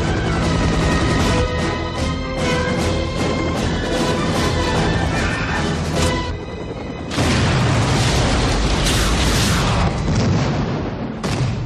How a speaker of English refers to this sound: So they have the great scene where the roof blows and... "Blow the roof. The car's up there! Blow the roof!"